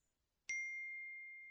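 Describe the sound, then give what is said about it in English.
A single bright notification ding from a phone strikes sharply and then rings on with a clear, steady tone that fades only slightly. No voices, just the lone chime. “15 minutes later, when his phone finally dings.”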